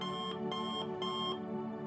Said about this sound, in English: You wake up to the alarm.